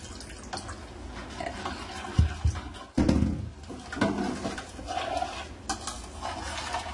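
Ingredients including Maggi and apple juice are stirred in a bowl so they dissolve, a steady wet swishing and scraping with light clinks of a utensil, broken by a couple of sharper knocks partway through. No one speaks.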